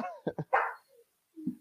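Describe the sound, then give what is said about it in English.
Several sharp dog barks in quick succession, a couple of short yips followed by a louder, fuller bark, then a brief lower woof after a pause, heard on their own. “Once again, my dogs agree with me that the rainbow cookies are really good.”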